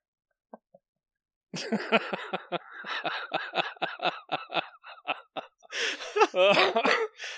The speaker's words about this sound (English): just coughed in your freaking face